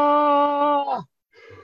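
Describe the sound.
As part of a joke, a man's voice imitates the scream of a man jumping from a 45-story building: a long, loud, steady-pitched 'aah' that suddenly drops and breaks off, then a brief silence and a shorter, fainter second cry.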